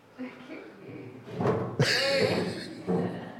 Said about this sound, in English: So now, try and move again, but move the chair as well with it.